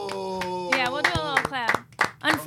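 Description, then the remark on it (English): A few people clap their hands in sharp, uneven bursts while voices cheer and whoop over them for a producer's belated birthday, their pitch sliding up and down in a lively, moderately loud celebration. “But we are giving him a little cheer here off camera.”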